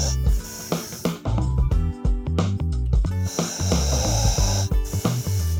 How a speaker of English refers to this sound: That's our beagle snoring in the background, and I cannot make her stop snoring. So if you know how to make her stop snoring, please send me an email.